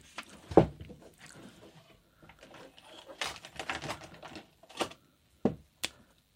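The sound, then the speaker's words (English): A pen scratches across paper in short, irregular strokes, with brief taps and pauses between bursts, as someone writes down a number, a mid-range price for a bottle of wine. “I think, why don't we both write a number down on this paper?”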